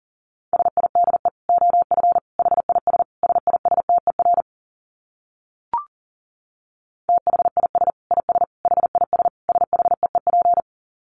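Fast Morse code at about 40 words per minute: rapid on-off beeps of a single steady mid-pitched tone, in two long runs separated by a pause with a brief click.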